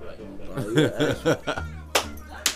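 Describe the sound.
Two sharp, crisp hand claps about half a second apart, made to turn on a TV, ring out right after a burst of chuckling, laughing voices.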